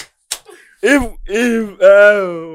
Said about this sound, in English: That slap. Oh my god.